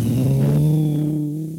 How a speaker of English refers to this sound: Knowles strode towards Sy's iron horse, then straddled it like his best lover. "It's okay," he whispered gently. "I'll have you back to him in no time." Turning the key, the engine roared into life.